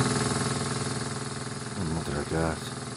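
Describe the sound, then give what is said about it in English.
A steady, throbbing mechanical drone from an industrial air compressor runs throughout at a constant loud level, with a low pulsing rumble; a brief voice-like sound rises over it near the end. “Number four is an industrial air compressor.”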